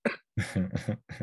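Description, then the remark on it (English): A person fakes a cough: a quick burst, then a longer run of voiced, throaty hacks, and one last short cough. Fairly loud, and there's no other talking. “And on their bicycle commutes the next day, fake a cough.”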